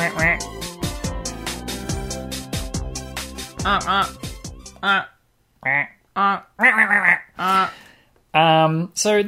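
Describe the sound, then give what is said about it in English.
People honk like geese, overlapping at first over a busy musical backdrop, then trading loud, nasal honks one after another with short pauses between them. “We're geese.”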